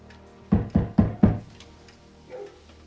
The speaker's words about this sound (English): You didn't ask there. Knock on that door.